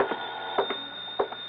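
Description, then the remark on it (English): A telephone bell in an apartment rings continuously, with sharp clattering strikes landing in quick pairs roughly every half second. The tone sounds thin and boxy, and no one speaks. “I just got back into my clothes when the phone rang.”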